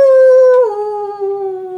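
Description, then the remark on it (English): A wolf lets out one long, sustained howl, holding a steady pitch before sliding lower and trailing on. It sounds loud, with no voices or other noise around it. “And you guys all hear this kind of like faint howling coming from somewhere in the house.”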